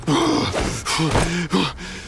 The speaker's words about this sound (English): After stepping on the accelerator countless times, Mr. Chubby and Skinny Larry finally escaped from the vast grassland. They sat exhausted and panting in their seats.